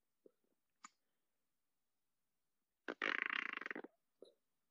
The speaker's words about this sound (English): I'm really trying to eat this apple really lightly without anyone hearing the crunch.